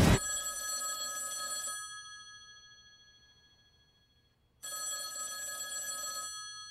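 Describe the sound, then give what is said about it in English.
An old-style telephone bell rings twice, each bright metallic trill lasting about a second and a half with a long pause between, fairly loud with no talking. “First, that phone over there is gonna ring.”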